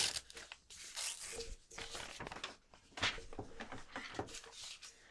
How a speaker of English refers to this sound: I'm tearing this paper.